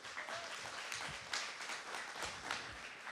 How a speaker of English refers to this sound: I think like 7 applause breaks is probably enough.